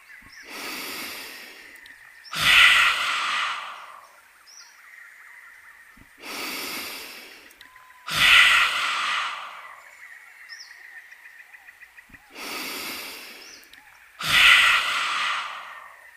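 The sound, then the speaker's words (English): Three rounds of yoga lion breath, done with the mouth open wide and the tongue stuck out: each soft, breathy inhale through the nose is followed by a louder, forceful, hissing exhale, repeating steadily about every six seconds with no talking. “I'll do three more lion breaths.”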